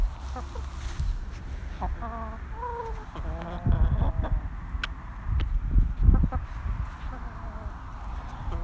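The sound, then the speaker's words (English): Several hens cluck and murmur close by in short, repeated calls, with a few louder squawky notes midway, over a steady low background rumble. “Just going to leave you with some sounds of the hens.”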